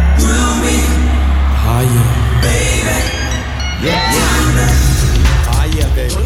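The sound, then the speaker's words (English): A huge concert crowd at the LA Coliseum roars and cheers without a break as a band goes on stage, loud throughout, with high whoops and shouts rising out of the dense wall of noise and a low rumble beneath. “And now, he's watching as the crowd at the LA Coliseum go off.”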